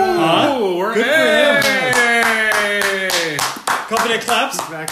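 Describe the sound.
Hands clap in a quick, steady rhythm, close and fairly loud, while a voice holds drawn-out wailing tones underneath that fade as the clapping takes over.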